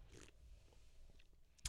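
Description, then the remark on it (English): A quiet sip of a Christmas ale: a soft slurp with faint wet mouth sounds, then a brief sharp clack near the end. No one speaks. “And he just took a sip.”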